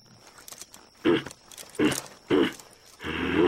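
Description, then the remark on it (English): A mare snorts and shifts, giving three short, breathy bursts followed by a longer, louder rasping exhale, fairly loud. “I don't think your horse likes me.”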